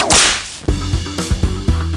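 A loud, sharp whip crack with a swishing sweep opens the sound, then gives way to a short stretch of music with steady percussive hits. No one speaks.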